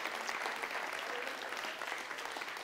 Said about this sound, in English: All right, now give God a hand clap of praise because you're the child of God.